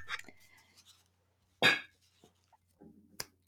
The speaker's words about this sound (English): So here it is. Literal big jar. I have slips of paper. Whoops, coming apart.